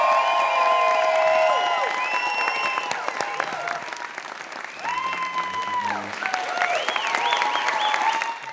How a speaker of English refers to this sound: Let's give a round of applause for Rosie Perez and Eric Haze.